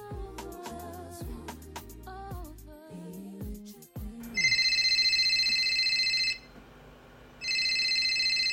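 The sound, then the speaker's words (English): A short musical passage gives way to a mobile phone ringing at 11 p.m., waking a sleeping couple in bed, a bright, steady electronic trill sounding in two long bursts separated by a brief pause, loud. “Oh, I'm sorry, honey. It's my phone.”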